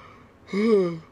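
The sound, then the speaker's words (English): A single drawn-out yawn, breathy and voiced, swelling then trailing off over about half a second, with no talking around it. “Yeah, I yawned because the Bulls make me tired.”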